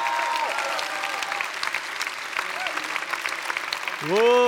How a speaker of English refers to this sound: Come on, give the Lord a clap and praise God.